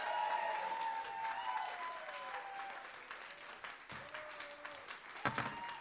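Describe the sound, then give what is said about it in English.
An audience claps for the silver-place winner in a steady round of applause, dense and fairly loud at first, then thinning out toward the end with a few scattered claps and a brief whistle-like tone. “A round of applause there for that amazing work of art.”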